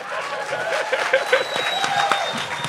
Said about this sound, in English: I don't know, that was a weird, I didn't give you a moment to clap there, but if you want to clap, you can.